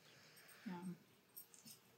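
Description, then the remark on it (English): Dogs Bella and Logan whimper softly a few times, scared while it rains during a thunderstorm: a brief low whine near the start of the second half, then fainter, higher whimpers trailing off, all quiet with no talking. “And it's raining, so all the dogs are freaking out.”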